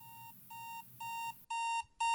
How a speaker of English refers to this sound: your alarm clock is blaring. Begrudgingly, immediately get up and like hit it.